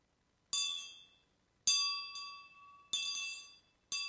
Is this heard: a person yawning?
no